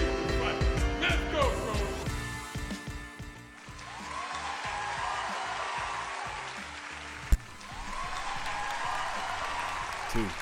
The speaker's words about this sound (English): That's right. Clap it up.